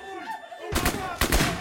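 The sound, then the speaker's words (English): Two loud bursts of rapid automatic gunfire from an AK-47 and a 9mm pistol crack out one after another, harsh and noisy, following a brief quieter moment with faint tonal sounds. Dante sprays a very small room with a terrazzo floor, shooting multiple people; 16 shots are fired in total. “Dante and Dante started to spray the room at that point with the AK-47 and the 9mm were shooting multiple people.”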